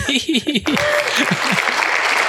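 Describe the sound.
An audience claps in a steady, dense wash of applause that fills the whole clip, with a voice talking over it at the start before trailing into the clapping.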